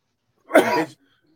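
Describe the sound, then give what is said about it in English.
A man who is choking lets out a single harsh, sputtering cough, loud and brief, then silence follows; no talking. “He's choking, not sneezing.”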